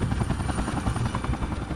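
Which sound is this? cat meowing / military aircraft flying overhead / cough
military aircraft flying overhead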